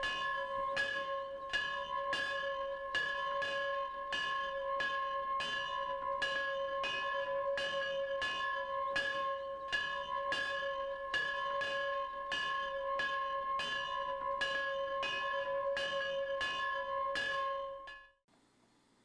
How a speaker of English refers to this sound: And as we hear the bell ringing, it pans up to the belfry, where we see the bell, and it fades to black.